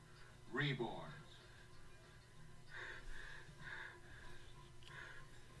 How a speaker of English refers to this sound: breathing accelerates.